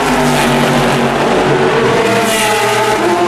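Race cars roar past on the start-finish straight at the Le Mans 24 Hours at 12:45 in the morning, heard from right by the line: a loud, continuous blend of high-revving engines whose layered whining tones shift slightly in pitch as they go by, with no voices.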